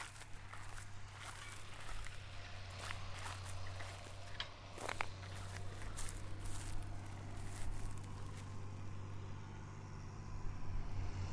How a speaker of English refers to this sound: This was a crop of wheat which has been combined, and years ago they used to burn the stubble, but now that's not the ticket, so it's being ploughed in. You can probably just start to hear the tractor in the distance.